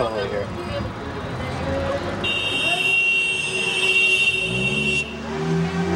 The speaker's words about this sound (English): Think he's honking at us or with us?